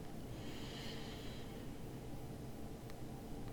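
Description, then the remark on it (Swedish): A single soft, airy, deep breath drawn in through the nose during a guided breathing exercise, lasting about a second, followed by near silence with faint background hiss. “Och ta tre lite djupare och lite längre andetag. Andas in genom näsan.”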